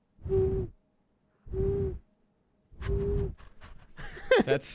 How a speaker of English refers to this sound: I can make my tongue into like a little circle and it makes a little whistle.